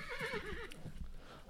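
A horse lets out a quavering, wavering whinny, followed by a few hollow clip-clopping hoof steps. No voices are heard.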